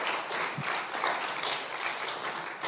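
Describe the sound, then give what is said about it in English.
A crowd in Guernsey applauds steadily, many hands clapping in a dense, even wash of sound that holds at a constant loudness throughout, with no voices heard. “So, can you give him a big round of applause to show him how you can clap as Guernsey guys and girls?”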